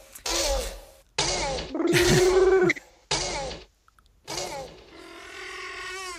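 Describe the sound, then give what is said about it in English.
A voice imitates velociraptor noises: a string of loud screeches and squeals in five separate bursts, the last trailing into a rough, purring rattle. “So that's a good way to end it, with a bunch of raptor noises.”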